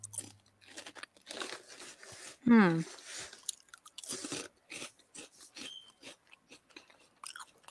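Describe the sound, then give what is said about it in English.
Steady crunching of a crisp, salty snack being chewed, with irregular brittle cracks throughout and a brief hummed vocal sound partway in. “The crunch and the salt are satisfying.”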